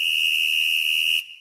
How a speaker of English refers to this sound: The sound of the whistle, …, you know what it means. I do. It means it's time for the substitution.